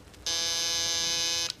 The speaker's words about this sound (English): You can imagine how impatient I was waiting for the bell to ring.